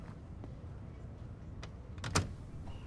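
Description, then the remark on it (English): A door shuts with a single solid thud and a brief rattle, preceded by a few light clicks and handling noises against a quiet background. “Can you close the door?”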